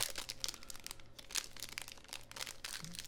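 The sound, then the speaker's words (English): Continuous crinkling and rustling of a thin plastic fruit snacks wrapper being handled and torn open, with irregular bursts of crackle and no voices over it. “So, excuse me while I open up these fruit snacks for my daughter.”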